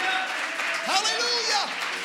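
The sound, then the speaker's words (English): A church audience clapping their hands during a service in a steady, dense wash of applause, with raised voices calling out over it partway through. “If you do, why don't you clap your hands like you desire God to do something fresh and great in your life?”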